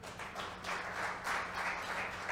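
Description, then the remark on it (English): An audience claps for Jesus, a dense, steady wash of many hands that keeps up evenly for a couple of seconds with no voices rising above it. “Clap for Jesus.”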